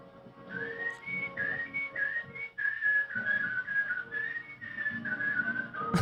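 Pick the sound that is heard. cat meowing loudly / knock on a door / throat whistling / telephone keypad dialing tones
throat whistling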